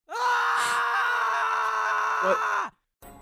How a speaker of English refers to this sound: And as you're all preparing, that's when you do hear something. You hear a scream.